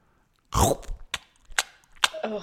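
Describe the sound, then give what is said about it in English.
Wet, crunchy chewing sounds, a loud squelchy bite followed by several shorter crunches and smacks spread irregularly over a couple of seconds. “And then you hear a sound, a kind of squelchy, crunchy sound.”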